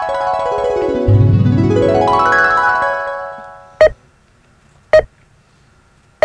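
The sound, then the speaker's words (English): A heart monitor beeps three times, short, sharp, evenly spaced electronic tones that follow a loud swooping synthetic tone that fades out. No one speaks. “What's beeping? Oh, that was the heart monitor.”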